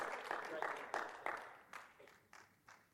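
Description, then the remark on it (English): Scattered audience applause with sharp individual claps, fairly loud at first and gradually thinning and fading over a few seconds. “That clap kept going.”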